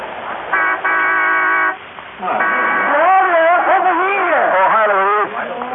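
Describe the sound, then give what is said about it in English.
A loud, steady train horn blares for about a second, then the 6:02 train pulls in with wavering, squealing tones that rise and fall for several seconds before fading. “My regular train was a 6:02. I waited for that because I had a large decision to make.”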